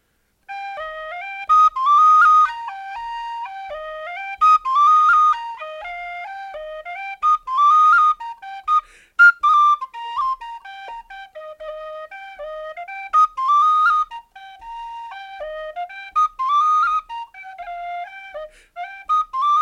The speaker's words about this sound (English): And here it is on whistle.